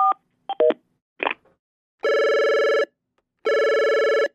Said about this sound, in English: But Lyle does not answer his phone.